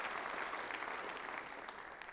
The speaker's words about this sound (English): Would you give the Lord a round of applause for his goodness toward us? Thank you, God. Thank you, God. Thank you, God.